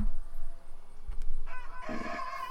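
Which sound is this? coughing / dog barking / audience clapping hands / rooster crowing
rooster crowing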